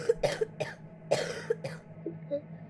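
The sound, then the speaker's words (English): A person ill with a fever sickness in a settlement coughs in a harsh fit of about five wet, chesty bursts, with short wheezy breaths and rasping throat sounds between them, no talking. “A new illness had popped up and was making the people of the settlement very ill with fever and fits of coughing that produced thick green balls of mucus and pus-filled blisters that formed on the inside of the mouth.”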